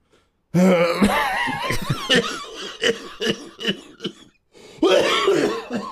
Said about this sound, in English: And you do a fake cough and then it turns into a real cough.